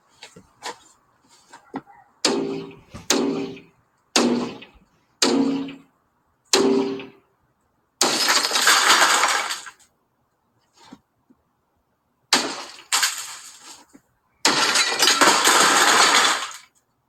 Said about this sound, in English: If you're listening, just glass breaking. So that's what I'm going to do. I'm going to use a hammer. Bust the window. A hammer on a pole.